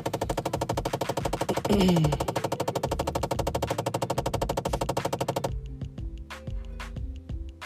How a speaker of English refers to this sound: And no, this is not an error. This is, again, my car. Like I said, if you've owned a Chevy Impala, then you know what this sound is.